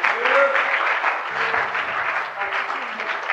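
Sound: audience clapping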